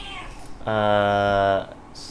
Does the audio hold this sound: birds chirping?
no